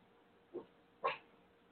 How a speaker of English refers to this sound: Otis, what are you barking? Who's out there?